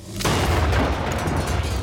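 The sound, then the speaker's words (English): A loud British Army grenade, thrown at a car, glances off the rear wheel and explodes at waist height after a brief quiet moment, followed by a heavy, rumbling roar and debris-like crackle that sustains without fading. No one speaks. “But the explosion at waist height is enough to rip into the SS man's side.”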